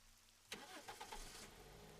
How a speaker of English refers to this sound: put the car in reverse and backed out of his driveway, knowing that it was going to be for the last time.